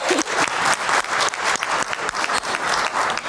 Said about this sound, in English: So first, let's give her a round of applause for that.